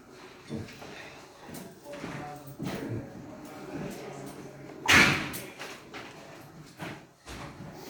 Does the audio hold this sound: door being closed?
yes